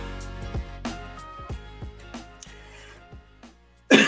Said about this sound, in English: Oh, wow. Started with a cough.